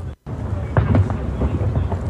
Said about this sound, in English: Insane explosions. Why? Just like people everywhere. There's explosions everywhere.